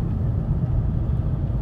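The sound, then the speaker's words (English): A snow-covered van speeds past while overtaking a car, a loud, steady low rumble of engine and road noise that fills the whole moment without rising or fading, with no voices. “And here is another car overtaking me.”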